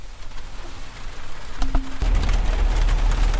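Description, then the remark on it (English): Steady cold rain hisses outdoors, growing noticeably heavier and louder partway through, with a brief low tone sounding just before the downpour swells. No one speaks. “It is ridiculously cold rain outside right now.”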